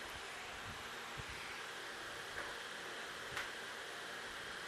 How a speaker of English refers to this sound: Got the air conditioning on in the press box here and the fan too. That's made it comfortable.